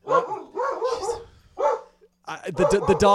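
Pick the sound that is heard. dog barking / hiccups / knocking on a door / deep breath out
dog barking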